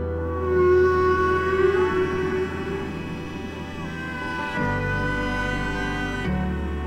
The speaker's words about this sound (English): People describe some of the sounds of whales as song.